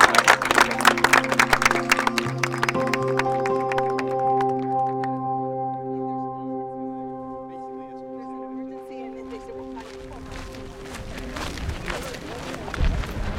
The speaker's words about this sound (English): So thank you so much, and I really appreciate it. Will you join me with the applause?